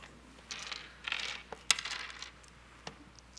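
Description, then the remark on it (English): A lot of dice clatter across a hard tabletop in a quick, rattling burst of small clicks, settling after a couple of seconds, with one last isolated tap; fairly quiet, no voices. “So you hear first... a lot of dice back. Yeah, they roll lots of dice.”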